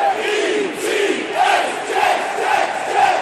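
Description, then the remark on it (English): A sellout stadium crowd at the Meadowlands roars continuously at the New York Jets' week-one NFL regular-season game against the Patriots on September 9, 2007. A dense wash of many voices with surging swells of cheering and chanting stays steady and loud throughout, with no single speaker standing out. “There's a sellout crowd at the Meadowlands, and the Jets are looking for revenge.”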